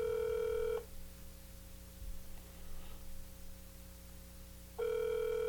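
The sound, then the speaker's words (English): The ringback tone of an outgoing phone call: two steady electronic rings with a long pause between them, a low hum and faint static filling the gap. No one speaks. “Come on, pick up, you crazy beast, you.”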